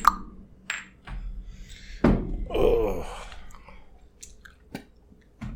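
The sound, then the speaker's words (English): People knocking back shots of liquor: quick swallowing and lip noises, a hard glass thunk, then a sharp gasping exhale and a short exclamation. “Yeah, let's take a shot, then I want to talk about this.”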